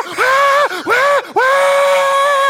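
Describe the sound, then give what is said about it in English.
A voice imitates a steady, high-pitched scream in three sustained bursts, each sliding up and holding a flat pitch, the last one longest, loud with no other talk. “But it's like a steady, like pitched scream.”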